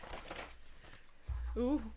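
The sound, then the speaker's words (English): Paper pages rustle and shuffle briefly, a soft papery crinkle that fades after half a second, followed by a low thump and a short vocal exclamation. “This is not the next page to this.”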